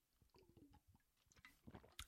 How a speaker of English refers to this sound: I'm going to take a sip of water because I've spoken quite a lot.